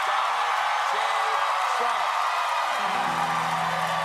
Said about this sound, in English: Uproarious, continuous applause.